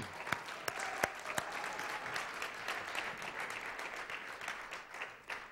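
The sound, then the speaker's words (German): An audience applauds a church worship team steadily, a dense wash of clapping hands with a few sharper individual claps standing out early on, sustained at an even level for several seconds. “Geben wir Ihnen vielleicht einmal einen kräftigen Applaus noch.”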